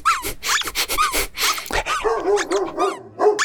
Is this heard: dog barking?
yes